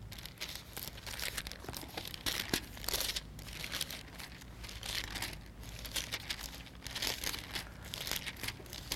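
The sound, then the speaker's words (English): Many thin Bible pages rustle and flip at once as listeners turn to Luke chapter 17, a continuous papery crinkling that swells and fades in waves, with no one speaking. “I'm glad if you have pages rustling.”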